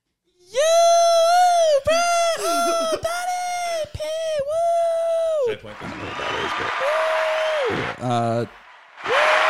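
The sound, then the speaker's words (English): Loud whoops and sustained high-pitched cheering shouts, given on request to pump up a performer, repeat in quick succession, followed by a burst of clapping and crowd noise mixed with more yelling. “We got the applause. The applause is happening.”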